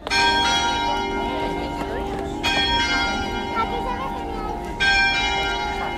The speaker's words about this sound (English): The bells have just started ringing again. I think they're about to have a service. So it is Saturday evening at about 6 p.m.